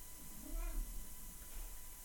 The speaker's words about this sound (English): Here's a podcast cat.